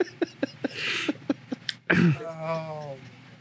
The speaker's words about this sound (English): I think he is choking on his lozenge. No, you just made me cough really hard.